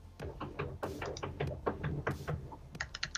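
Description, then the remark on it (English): A cat scratches and paws at the door of a studio, making a rapid, irregular series of sharp taps and scrapes that continue for a few seconds with no voices. “My fucking cat is at the door of my studio.”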